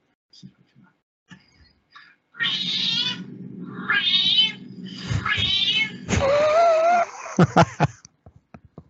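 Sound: cat meowing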